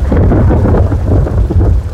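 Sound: thunder booming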